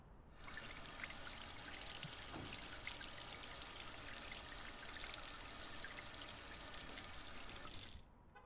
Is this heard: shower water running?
yes